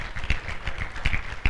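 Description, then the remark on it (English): An audience claps together as a clap offering of praise to the Lord, in a dense, steady patter of many hands, with a few sharper, louder claps standing out; the applause is moderately loud and continues without any talking over it. “Saints, give the Lord a clap offering of praise.”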